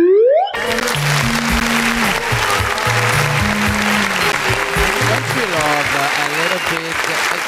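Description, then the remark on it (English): Loud, sustained applause from a large crowd claps steadily for about seven seconds without letting up, with low musical notes and a few voices faintly audible beneath it. “This applause is too long, in my opinion.”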